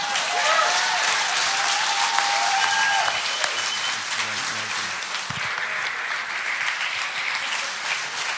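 Sustained applause from an audience at a baptism service, a dense crackling wash of many hands clapping at steady loudness throughout, with a few faint cheers and whoops mixed in.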